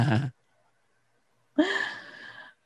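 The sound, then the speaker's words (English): A person makes a mock snoring sound: a short throaty snort, a pause of silence, then a longer raspy, breathy drawn-out snore, fairly loud, with no talking. “Yeah, but try not to snore on microphone.”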